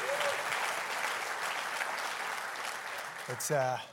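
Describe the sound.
A crowd applauds steadily, a dense wash of clapping filling the room, and near the end a voice briefly rises over the fading applause.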